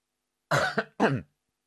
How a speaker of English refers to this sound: Sorry about that, bit of a cough.